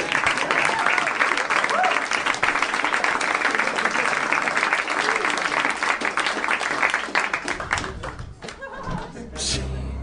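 Loud, sustained audience applause with dense, crackling clapping, tapering off slightly near the end as a few scattered claps and murmurs remain.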